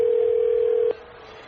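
A single telephone ringing tone heard as an outgoing call is placed: a steady, clear electronic hum that holds for almost a second, then cuts off, leaving quiet line hiss. No one speaks.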